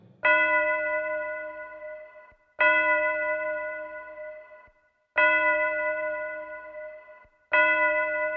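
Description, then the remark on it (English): Four slow, resonant bell strikes toll at a steady pace, each ringing out loudly and fading away before the next, like a clock chiming the hour, with no voices present. “Scrooge slipped into the silence of a dreamless sleep before the clocks began to chime the hour.”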